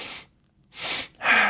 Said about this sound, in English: And then without realizing it, you do a double inhale and then exhale. Typically the inhales are done through the nose and the exhale is done through the mouth.